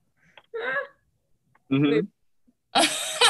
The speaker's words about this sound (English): Sorry. My boyfriend is having like a sneezing fit in the other room.